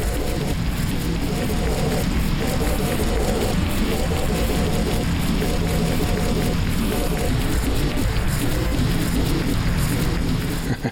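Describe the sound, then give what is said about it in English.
A sequencer plays different sequences into car engine sound files: a loud, steady rumbling drone with a low humming tone and a faint, repeating pulse running through it for the whole stretch. “What I'm doing here is playing different sequences into different sound files that are on the sequencer, and so it's the exact same one that was making those noises, but it's now working with a car engine.”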